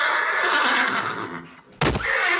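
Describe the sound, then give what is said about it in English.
A horse gives one long, loud whinny that wavers and fades out, followed after a brief pause by a sudden harsh burst like a snort. No one speaks. “Wait, let's ask the horse.”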